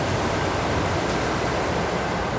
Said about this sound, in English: And the sound of the water rippling down along here is just as nice as well. So it all adds to the peace and tranquility of the area.